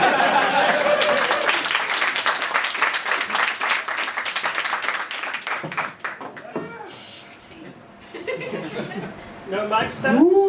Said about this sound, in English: Guys, please put your hands together for Regular Features Live! That was very impactful. Can't stop applauding!